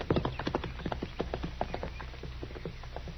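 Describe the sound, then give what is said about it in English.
Horse hooves clip-clop in a steady, rhythmic walking pace, moderately loud, with a faint low rumble underneath and no talking. “I left my horse over the rise there, Snyder.”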